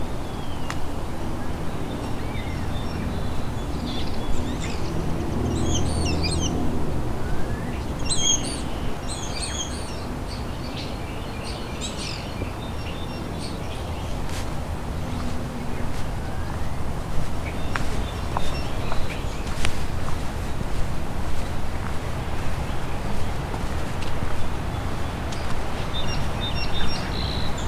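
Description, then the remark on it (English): A song sparrow runs through varied, borrowed calls of other bird species, mimicking house sparrow, nuthatch, tern and osprey, delivering bright chirps and whistles in irregular bursts over a steady low rumble of outdoor background noise. “So far I heard house sparrow, nuthatch, tern, osprey, all being mimicked.”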